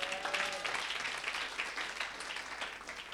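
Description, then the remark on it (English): A crowd claps together during a sermon in a steady wash of applause, dense and continuous for a few seconds. “I thought you would clap and shout, amen.”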